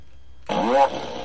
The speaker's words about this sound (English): Oh, don't do a fart yet. Well, the weird one is, the first one is always that little tiny one out of the fart machine, and I feel like...